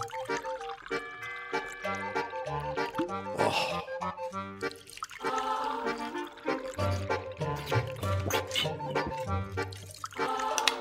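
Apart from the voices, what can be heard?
water poured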